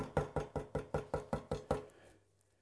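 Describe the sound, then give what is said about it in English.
Eight sharp knocks on the wooden door of a gate in a quick, even rhythm, fairly loud, fading into quiet after the last one. “Peter knocked at the door of the gate.”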